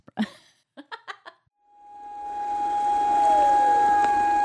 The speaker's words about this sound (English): On Monday, sirens sounded in Japan as the nation stopped to commemorate the moment 1 month ago when a record 9.0 earthquake struck at 2:46 local time.